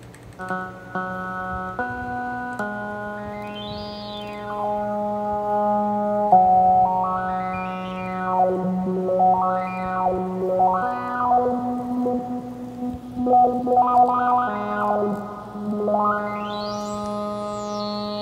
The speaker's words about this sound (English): You can see I'm lighting this up as I press things, it's gonna send MIDI. If I restart my keyboard over here, you should hear it play different notes.